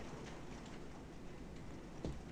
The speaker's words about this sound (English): I can hear the rain. Is it raining there? Mm-hmm. I can hear the rain